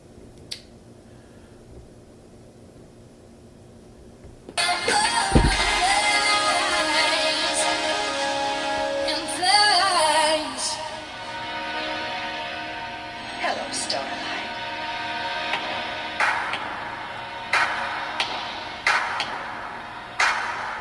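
A DJ transition between two songs: a quiet, murky passage suddenly cuts to a loud, bright track with singing and sweeping tones, which carries on steadily to the end.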